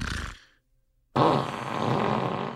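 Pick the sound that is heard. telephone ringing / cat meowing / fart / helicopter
fart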